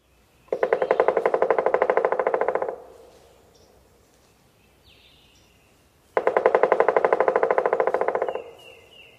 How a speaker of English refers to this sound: Pileated woodpeckers' drums are fairly slow and very slightly accelerating. It also typically lasts a little longer than northern flicker. The accelerating can be subtle and hard to hear, but here is the drumming of the pileated woodpecker.